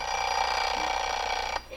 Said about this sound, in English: Here's a dandy alarm clock. Listen to this.